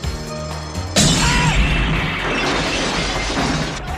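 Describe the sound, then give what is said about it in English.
A steady tonal drone is cut off by a sudden, loud gas explosion, followed by a sustained roaring rumble with shattering debris and crashing that slowly settles. “There's a major gas explosion.”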